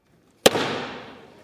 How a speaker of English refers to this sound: Yeah, North Carolina Rep. Patrick McHenry is now the Speaker pro tempore, a.k.a. temporary Speaker of the House, and he's apparently not very happy about it, as shown by how hard he slammed the gavel down after assuming the position.